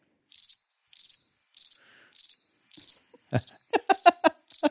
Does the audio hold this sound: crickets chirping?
yes